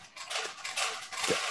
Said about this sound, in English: Sorry, my cat's feeder just went off.